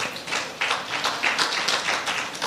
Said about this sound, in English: So we honor you today, God, for their salvation. And we give God a hand clap of praise for it as well.